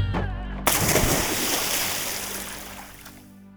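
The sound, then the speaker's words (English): A heavy splash as a person falls off a ladder into a moat, loud, followed by a few seconds of churning, bubbling water that gradually settles. “And Tom fell off the ladder into the moat.”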